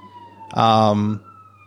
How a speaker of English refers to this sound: There's some sirens in the background, and they're not coming for me, so I'm going to take that as a today is a good day type message, and we'll go from there.